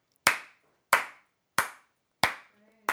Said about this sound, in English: Yay, Skype. We're clapping for Skype, guys. Or actually, my internet's working.